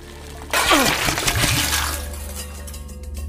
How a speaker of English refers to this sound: One evening, while trying to cook a simple meal with his hardened hands, he spilled boiling water on himself.